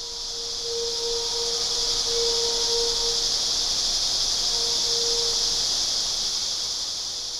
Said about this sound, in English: The sound is very intense, so people will hear the cicadas. If you know what a cicada is, if you grew up in the South, you might. It's like a grasshopper, but more intense, and they start out as kind of one, and then they begin to build.